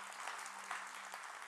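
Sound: audience clapping hands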